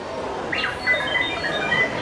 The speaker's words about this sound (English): Recognize that sound? That beeping is from R2-D2, one of the most recognizable characters from Star Wars. But that's not a quip from one of the movies. That came from a black and gold life-size replica, built by a member of a fan group